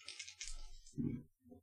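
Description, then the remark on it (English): Dice are rolled on a table, clattering and tumbling in a quick rattling burst, then a final couple of clicks as they settle; fairly loud, with no talking. “And he rolled nothing.”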